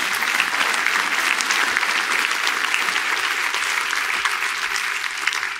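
A crowd applauds steadily for several seconds, a dense wash of many hands clapping at an even, loud level with no voices standing out.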